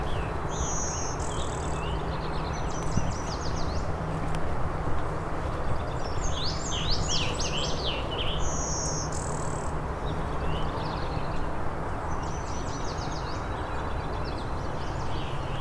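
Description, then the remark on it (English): A blue-winged warbler's buzzy bee-buzz song rings out among other bird calls, set against a steady hiss of insects and outdoor ambience. “The bee buzz song.”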